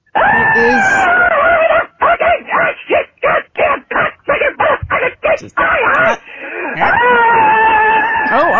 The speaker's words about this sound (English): Oh, easy. Now that is a definitive scream mail, sir, but you need to calm the fuck down. No. This is scream mail. You call in to scream.